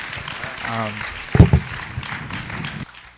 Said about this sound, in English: Will you guys please give him a round of applause? And he's going to go ahead and take a seat.